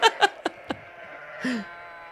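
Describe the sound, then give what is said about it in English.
A few short, harmonic bleats in quick succession, then a longer wavering bleat with a falling pitch, from a bunch of sheep running past; no talking. “a bunch of sheep are running past and then YouTube algorithm thought they were saying Sam”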